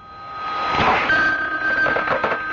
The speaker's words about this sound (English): you'd better answer the phone.